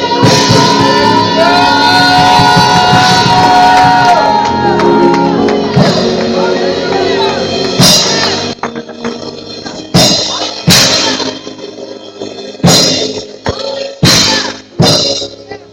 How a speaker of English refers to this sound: Can we just give God a shout of praise?